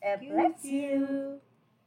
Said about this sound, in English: Bless you. Did you sneeze? He's congested, the doctor said.